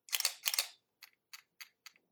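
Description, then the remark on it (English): A camera shutter fires at a slow shutter speed, two drawn-out mechanical clacks with a short gap between, followed by four quick, crisp clicks evenly spaced. Clear, with no voices. “But literally, your shutter's going and then shutting.”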